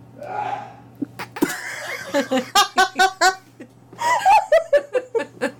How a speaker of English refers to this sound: Bless you. Is he okay? Yeah, he's fine. He likes to exaggerate his sneezes sometimes. On purpose.